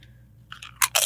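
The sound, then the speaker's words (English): Crisp crunching of tortilla chips being bitten and chewed during a guacamole tasting, a few light crackles followed by two loud, bright bursts of crunching, with no talking. “How did you guys determine what chips, are these the chips that the places have recommended?”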